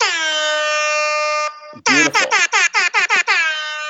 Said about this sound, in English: Now, wait, do you, like, is that part of your generation, like, one of those air horns when, like, that, like, to the 20-somethings, that means, like